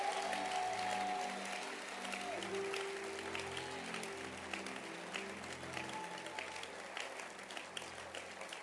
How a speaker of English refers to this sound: But I want you to clap your hands for yourselves because you made it to church again.